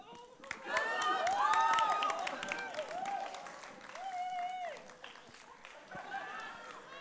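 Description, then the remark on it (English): A crowd cheers and claps for a short race run by participants carrying extra weight, with excited high-pitched shouts rising and falling over a steady patter of scattered applause that keeps up throughout, loudest early on. “Cheer them on.”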